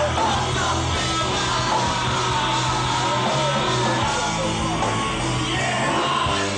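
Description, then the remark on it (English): A loud, dense mass of voices shouts and yells together over full-band live music, a sustained roar of a hometown concert crowd that has rushed the stage, shouting the chorus arm in arm in place of the band's singers, for several seconds. “They wouldn't sing the chorus because, in their place, the crowd would rush the stage and they'd be the ones shouting their confession to the world, arm in arm.”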